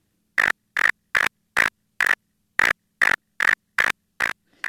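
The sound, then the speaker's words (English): A reconstructed song of an extinct cricket-like insect: about ten loud, buzzy chirps at a steady pace with one slightly longer pause, each a short raspy burst with a mid-high ringing tone and no talking. “Well, we're listening to your reconstruction of this cricket-like creature.”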